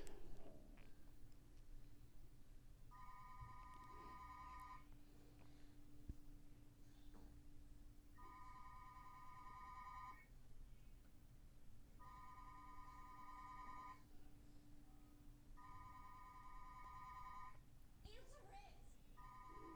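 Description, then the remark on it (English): A telephone that is not connected rings in repeated bursts of about two seconds each, with short pauses between them. The rings are clear and steady over a low hum and faint background noise. “Yeah, we don't care that it's not connected. Clearly it's ringing.”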